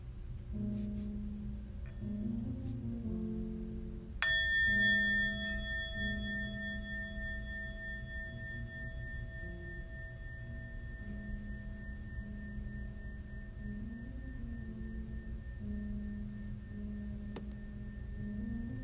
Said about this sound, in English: Listening again to a few sounds of the bell.